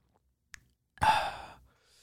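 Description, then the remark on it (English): A faint click of a sip from a tall drink of water, then a pause and a loud, breathy exhale of satisfaction lasting about half a second before trailing off. No talking. “I am sipping on a nice tall thingy-majigger of agua, the purest drink.”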